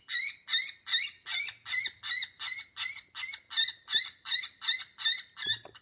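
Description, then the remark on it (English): A raspy woodpecker distress call played as a prey sound from a Fox Pro X2S electronic game caller, about fourteen harsh, squawking notes in a steady, even rhythm, loud with no talking. “This is where you put in the sound of the raspy woodpecker.”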